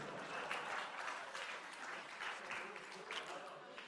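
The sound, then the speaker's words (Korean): Democratic Party central committee members clap steadily during Jung Chung-rae's speech, a dense, bright patter of many hands with small swells in intensity, sustained applause filling the whole moment without a break. “왜 박수를 안 치십니까?”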